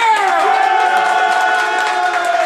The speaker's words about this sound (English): If you think … won this shit, clap, please.